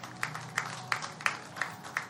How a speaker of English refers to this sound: Thank you for clapping from the back.